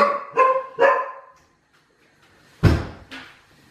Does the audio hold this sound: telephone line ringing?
no